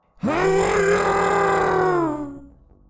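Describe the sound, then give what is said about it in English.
An eerie howl of the Neon Man in a dark park: one loud, sustained, harshly harmonic cry lasting about two seconds, holding a steady low-mid pitch before sagging downward and trailing off, with no talking. “I could recognize the howl anywhere.”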